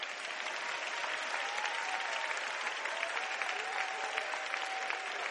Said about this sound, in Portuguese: Agora pode aplaudir de verdade.